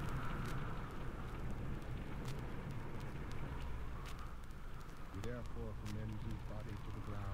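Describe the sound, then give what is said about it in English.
Steady, soft rain falls during a funeral, hissing evenly throughout, a continuous wash of patter with no breaks, and a human voice briefly rises over it toward the end. “as I stood in the gentle rain with my grieving Aunt … crying by my side”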